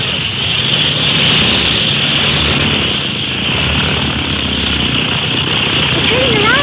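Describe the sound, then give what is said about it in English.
A small plane's propeller engine roars loudly and steadily, a dense, throbbing drone that holds for several seconds as the aircraft powers up to take off into the wind. “But the small plane as that can be brought right up to the float instead of them having to roll out.”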